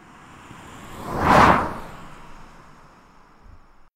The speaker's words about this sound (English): So now let's try the whip pans. There's two examples of that. And again, whip pan is panning your mic in the opposite direction of the car as it's going by you.